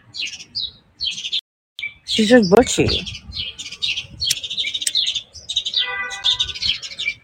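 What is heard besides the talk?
birds chirping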